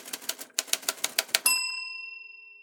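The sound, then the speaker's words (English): A quick run of crisp keystrokes on a new typewriter, steady, with a brief pause, then a clear bell ding that rings out and fades slowly. “What's changed is that I have a new typewriter.”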